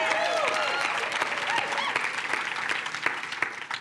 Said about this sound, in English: So give her a round of applause as she